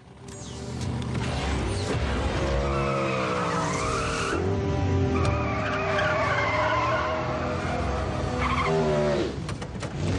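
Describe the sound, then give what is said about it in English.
A powerful car of over 2,000 horsepower skids hard, its tires squealing in long wavering tones over a roaring engine, loud for about ten seconds with no talking. “To have a car that's 2,000 horsepower plus is any car guy's dream. You can do stuff like this.”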